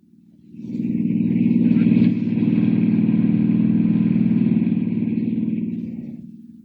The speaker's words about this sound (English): Hiring a car, Clark Kent heads out at once on the dusty road to San Miguel, 50 miles away.